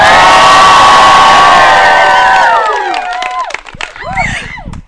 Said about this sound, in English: That was such a good cheer. It like reverberated in the canyon.